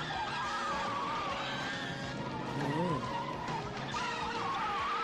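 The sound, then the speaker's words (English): A car skids hard and flips over in a film car-chase stunt, its tires screeching in wavering, sustained squeals over dense, loud engine and road noise that runs steadily for the whole stretch, chaotic. “Oh, it's the car flip?”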